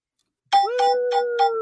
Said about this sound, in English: There you go. Ring the bell. That'll be the bell I ring whenever we get to the one squashy, squishy women's match.